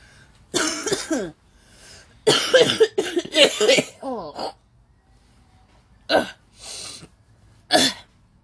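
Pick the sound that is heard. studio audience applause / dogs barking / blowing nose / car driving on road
blowing nose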